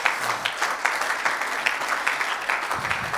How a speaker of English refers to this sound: Will you clap your hands right now?